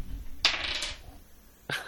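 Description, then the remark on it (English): Dice clatter onto a hard surface with a sharp rattling burst that quickly fades, followed by a second short clack a moment later. The sound is fairly loud, with no talking. “Do you want to roll dice for me, mate? Do a dice roll.”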